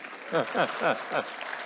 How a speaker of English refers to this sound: Thank you, Lord. Yeah, applaud the Lord. Thank you.